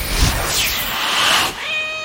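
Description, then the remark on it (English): A loud cat meow, drawn out and wavering in pitch for over a second, trailing into a thinner, steadier tone at the end. No one speaks. “Can I turn into Lady? The cat?”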